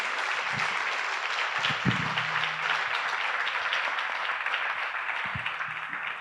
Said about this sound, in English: If you have been blessed by our panelists, won't you give God a hand of praise and a thank you clap to them?